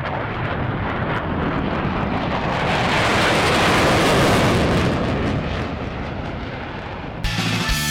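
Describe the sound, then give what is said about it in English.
A private jet airplane roars past, its loud rushing engine noise swelling to a peak midway and then easing off as it comes in to land at a small airport in Nanaimo, British Columbia, with no voices present. “Hop on the jet. We're going across the nation.”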